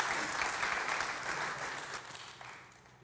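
An audience applauds steadily, a dense wash of many hands clapping that holds for a couple of seconds and then begins to thin and fade.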